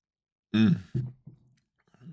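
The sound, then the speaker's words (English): Three throaty gulps of Pilsner beer in quick succession, the first loudest and the next two fading, with another swallow just beginning at the end. “You can't really sip a Pilsner. You have to get a good three swallows in. I'm going to back have another.”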